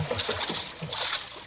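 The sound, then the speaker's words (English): A small boat glides along a river, kept close in as it approaches a bend and a mine entrance in the river bank, with a steady wash of water and rhythmic swishing surges against the hull, fairly continuous. “I'm keeping the boat in as close as I can.”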